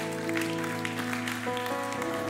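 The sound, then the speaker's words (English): An audience claps steadily to the Lord during a worship service over sustained keyboard or organ chords, the hand claps forming a continuous spattering texture beneath the held musical tones. “Could we put our hands together and clap to the Lord?”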